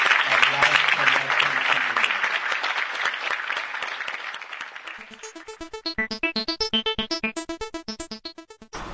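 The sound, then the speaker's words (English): An audience applauds the presentation of a Lifetime Achievement Award with a dense, steady clatter of clapping for about five seconds, then it fades out as rhythmic, bright music with a pulsing beat takes over. “I want you guys to give a warm round of applause to Dr. Roger Harris for being the first recipient.”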